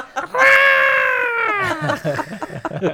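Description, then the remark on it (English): A voice imitates the yodeling banshee scream of a rider on a theme park ride: one long, loud, wavering high-pitched wail held for over a second, sliding slightly downward before breaking off into choppy vocal sounds. “And you scream and you... like a banshee, like Mother Yodler.”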